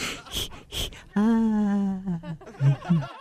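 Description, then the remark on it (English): As a breathing exercise, two quick, breathy exhales are followed by a sustained, soft vocal scream with a slightly falling pitch, then a few shorter voiced sounds trailing off, all moderately loud. “I like to do two short breaths followed by a soft scream.”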